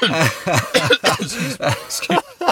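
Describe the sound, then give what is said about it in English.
A run of raspy coughs in quick succession, each a short harsh burst with a bit of throaty voicing, several fitting into just a couple of seconds. “All these coughs coming out now.”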